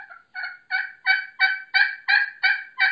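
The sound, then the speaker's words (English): A Primos Crystal the Freak slate pot turkey call sounds a steady run of about nine raspy clucking notes, evenly spaced, growing slightly louder as the sequence goes on, with no voices. “I like a slate because you can purr on it, you can cluck on it,”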